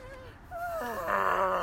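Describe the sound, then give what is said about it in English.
A voice imitates an elephant call with a wavering, whiny wail whose pitch slides and bends, growing louder and brighter toward the end over about a second and a half. “I can't do an elephant anymore.”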